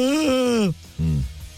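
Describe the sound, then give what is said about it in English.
A loud, drawn-out yawn on a radio show, with a strong voiced tone that rises slightly and then slides down, followed by a short, lower groaning exhale. “How many people now started yawning because I just yawned?”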